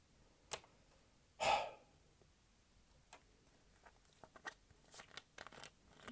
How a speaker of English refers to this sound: I had to take a sip of something here. Ice cold Pepsi. Which is the official drink of the National Football League.